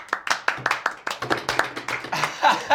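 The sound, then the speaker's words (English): Audience applause: a brisk run of sharp, crisp hand claps at a steady rhythm, several per second, fairly loud and continuing for a few seconds with no talking over it. “Again, applaud if you like.”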